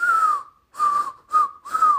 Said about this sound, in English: I can't whistle, so that's me trying to blow air.